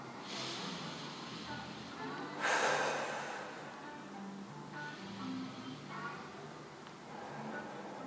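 Slow, audible breaths during a relaxation exercise, in through the nose and out through the mouth: soft airy inhales alternating with longer, breathier exhales, with one stronger rushing breath midway. There is no talking, only quiet hiss between breaths.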